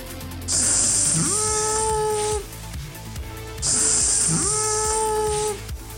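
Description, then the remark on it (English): The onomatopoeia of Beth Ross accidentally frying her hair in a corn dog fryer, from issue 1 of Prez by DC Comics (2015): two loud bursts of sizzling, each about two seconds long, with a rising, wailing cry partway through each burst. “is the sound of Beth Ross, soon to be President of the United States of America, accidentally frying her hair in a corn dog fryer in issue 1 of Prez.”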